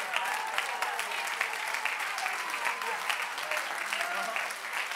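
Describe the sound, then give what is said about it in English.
An audience claps their hands unto the Lord in a steady, dense wash of applause that fills the room, many overlapping claps sustained at even loudness throughout, with no talking over it. “In the name of Jesus, come on, clap those hands one more time unto the Lord.”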